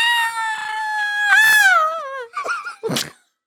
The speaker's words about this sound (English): I love that you do the scream every week. I love it. I just can't not.